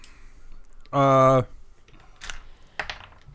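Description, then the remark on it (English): A short voiced sound comes first, then dice clatter in a couple of quick, rattling bursts of clicks that fade fast, as a die is rolled. “Why did you roll a dice?”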